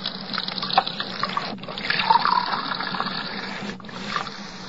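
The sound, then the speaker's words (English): Tap water runs in a steady stream into a glass, briefly cutting off twice before flowing again. No one speaks. “You didn't drink the water”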